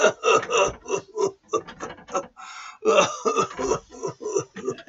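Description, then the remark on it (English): A voice acts out a fit of wet, sputtering coughing and throat-clearing for a figure lying on the floor with slime over his face, a run of loud bursts with a brief quieter gasp in the middle before the hacking resumes. “The figure on the floor has like got this kind of weird slime over his face and like starts coughing.”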